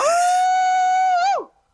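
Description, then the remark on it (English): A person imitates a hound dog howl: one loud, steady, high-pitched wail held for over a second, then a brief upward lift before the voice slides down and trails off. “So if you're ready, you can close us out with your best old hound dog howl.”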